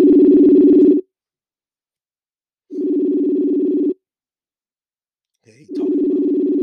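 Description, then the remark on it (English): Ringback tone of an outgoing phone call: three steady buzzing tones about a second long, separated by silent gaps, heard clearly with no talking. “He ain't gonna pick up the goddamn phone.”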